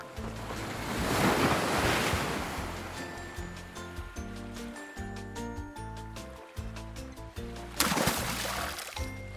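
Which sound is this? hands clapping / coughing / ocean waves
ocean waves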